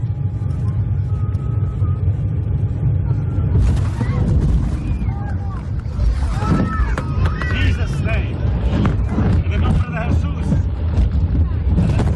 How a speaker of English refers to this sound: But it's really all just thumping, screaming, and darkness, and that picture out the window.